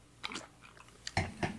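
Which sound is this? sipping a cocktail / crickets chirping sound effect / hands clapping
sipping a cocktail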